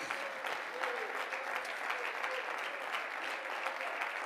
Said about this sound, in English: Come on, clap your hands and praise Him this morning.